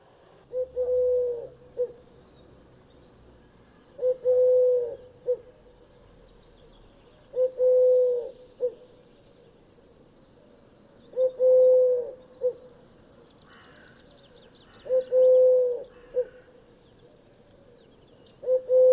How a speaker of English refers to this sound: To my ear, the sound of a collared dove sounds nothing like Deca Octo. I cannot help hear a rather flat United, the sound of a rather miserable football fan. Let's hear it again.